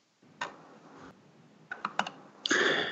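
Typing on a computer keyboard, searching a document for the word "kiss": one keystroke, then a quick run of clicks, ending in a dense flurry of rapid taps. Fairly quiet throughout, with no one speaking.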